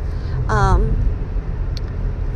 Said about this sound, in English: So, oh, this traffic.